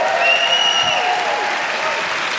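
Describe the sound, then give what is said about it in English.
A crowd claps hands together in a dense, continuous wash of applause, loud and steady throughout, with a few faint sustained tones, like shouts or whoops, riding over the clapping. “And the Bible says in Psalm 47, verse 1, oh, clap your hands, all you peoples.”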